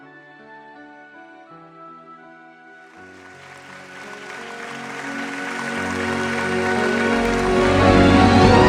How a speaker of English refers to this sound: Go ahead and give God a great clap. Give him a praise.